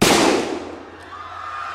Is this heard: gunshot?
yes